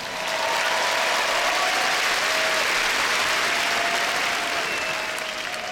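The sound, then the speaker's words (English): A crowd applauds steadily as Russell Brand is welcomed. It is a dense, even wash of many hands clapping that stays loud throughout, with a faint ratcheting texture and no voices standing out. “Thanks for clapping and that.”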